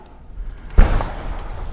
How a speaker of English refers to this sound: Sorry, every time doors open anymore, I get a little nervous, you know, active shooters and all.